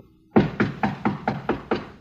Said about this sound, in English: Reckon I better knock.